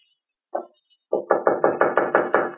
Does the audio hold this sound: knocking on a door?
yes